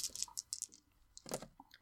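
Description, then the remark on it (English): Four dice rattle and tumble, giving a quick run of sharp, irregular plastic clicks and clatters over about two seconds, fairly quiet, with no voices. “So roll those four dice.”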